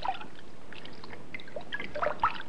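Water sloshes and trickles as someone steps into a filled bathtub, with soft splashes and drips building toward a couple of brighter splashes near the end, fairly quiet.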